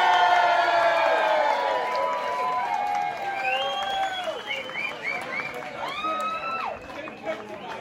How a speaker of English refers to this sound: And an extra special cheer. Second place, let's cheer for 52.